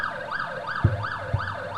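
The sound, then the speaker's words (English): A police siren wails in quick rising and falling sweeps, about four cycles, steady and fairly loud, with a couple of low thumps underneath and no voices. “See, the cops aren't happy about it.”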